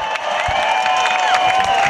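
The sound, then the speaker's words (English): A crowd of over 12,000 at a rally about California's Proposition 8 and same-sex marriage cheers in a steady, dense roar that holds level throughout, with thin high whistle-like tones and scattered claps running through the noise. “There were a few sweaty fanatics waving Bibles, but for the most part, the crowd was a supportive mix of gay and straight, young and old, white and black, over 12,000 strong.”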